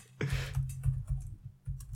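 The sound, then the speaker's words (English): Rapid keyboard typing, a quick run of soft clicking keystrokes with a low thumping undertone, starting with a brief burst of noise and continuing in an uneven rhythm, with no voices. “You can't both type.”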